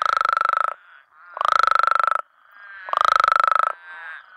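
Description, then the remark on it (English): A male Mexican spadefoot toad gives three loud, croaky baritone trills, each a rapid buzzing pulse train lasting under a second, separated by brief quieter gaps with softer trilling between. “Instead of making that quacking I described earlier, these males make this kind of baritone trill, but it sounds kind of more croaky.”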